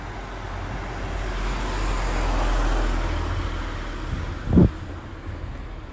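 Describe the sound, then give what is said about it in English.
A car passes by outdoors during a walk, its engine noise swelling gradually and then fading, with a brief thump or knock near the end against steady low road rumble. “And there's a car.”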